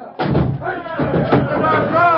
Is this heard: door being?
yes